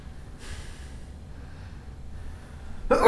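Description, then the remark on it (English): A single sneeze on a red carpet: a soft, breathy inhale builds up, then a sharp, loud explosive burst at the very end. “Bless you.”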